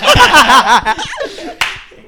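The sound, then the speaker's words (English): Voiced laughter runs through the first second, then a sharp, loud hand clap snaps out alone near the end, with a fainter slap just before it, over quiet chuckling. “Love the double clap.”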